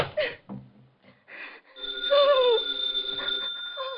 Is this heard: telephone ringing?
yes